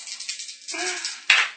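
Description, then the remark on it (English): Dice are rolled in a tabletop game, a roll to hit a wall, rattling in a rapid, clicking flurry, then tumbling and settling with one sharp, loud clack near the end. No one speaks. “Wait. Yeah, wrong dice. Well, no, I was going to roll to hit the wall.”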